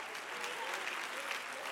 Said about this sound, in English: Oh, clap your hands unto the Lord, all ye people.